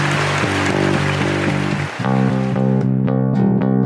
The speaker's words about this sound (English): For instance, this first one, which is a red button. Simple sound. You can turn it off. You can tap it once to turn it on, tap it off twice, the second time to turn it off. Got a little bit of applause there.